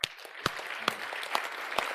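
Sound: audience hand clapping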